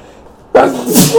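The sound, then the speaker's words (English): A single sharp sneeze bursts out after a moment of near silence, loud and breathy with a brief tonal catch before trailing off. “Bless you! Oh, excuse me.”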